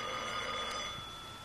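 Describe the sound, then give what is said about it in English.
A telephone rings with a steady, continuous metallic jangle that holds a bright, high tone throughout, fairly loud and easing off slightly toward the end, with no one speaking. “Yes, get me Lieutenant Jones on the phone.”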